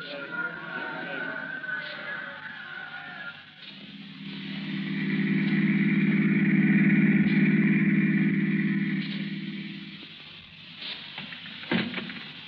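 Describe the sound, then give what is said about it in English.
A car's low engine rumble swells up loudly after a few seconds, holds steady, then fades away as the car drives off, with faint background noise before and after. “I've got the car outside.”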